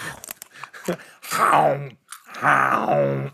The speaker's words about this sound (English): Almost as good as you crunching pretzels directly into a microphone. There has to be an ASMR subset that just loves crunchy.